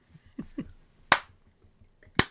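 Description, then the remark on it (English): A sarcastic slow clap: two sharp, loud, deliberate hand claps about a second apart, preceded by a couple of softer taps, with no talking. “Slow clap.”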